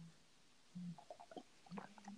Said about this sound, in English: Took another sip of water.